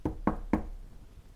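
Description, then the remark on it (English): Three firm knocks on the door of a black rock home in the rock fields north of Valley Town, in an even, quick rhythm, each a sharp thud with a short decay, with no voices. “The two came upon a black rock home, and Ben knocked.”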